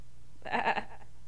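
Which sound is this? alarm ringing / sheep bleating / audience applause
sheep bleating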